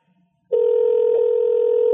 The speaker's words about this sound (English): Well, the phone is ringing. Is that as loud as it gets? Yeah.